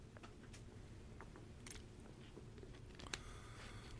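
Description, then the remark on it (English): Someone sips water, with quiet, intermittent slurping and swallowing sounds and a sharper wet click near the end. No one speaks. “I'm going to take a sip of water, cool down.”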